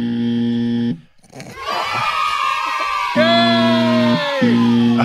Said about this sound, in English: Oh, we got trigger finger on the buzzer.